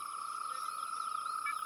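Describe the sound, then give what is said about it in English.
A dense, unbroken chorus of frogs and insects, with steady high-pitched trilling bands layered at several pitches and warbling calls weaving between them, with no voices. “It sounded like the different species were taking turns singing.”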